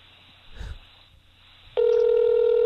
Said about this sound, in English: Oh, wait, no, somebody's beeping through. Someone's beeping through? That's weird.